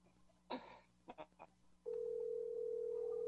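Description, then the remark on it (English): A few handling clicks and knocks, then a steady telephone tone sounds on the line, a continuous mid-pitched hum holding unbroken until the end, heard alone with no talking. “Can you hear the phone?”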